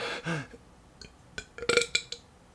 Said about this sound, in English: And for you guys today, right now, I'm going to burp.